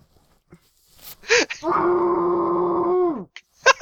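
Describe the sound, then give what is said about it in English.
A single loud, muffled scream into a pillow, held at a steady pitch for about a second and a half before trailing off, with short breathy sounds just before and after. “Hang on, I have a pillow here. I need to scream into it.”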